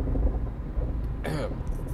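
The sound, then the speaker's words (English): A steady low engine-and-road rumble from inside a moving car, broken by a sharp clunking rattle about midway through and a few lighter knocks after, from the car's worn struts or suspension rattling while driving. “I got my car. It sounds horrible. Hopefully you guys don't hear my struts or suspension or whatever the hell that is.”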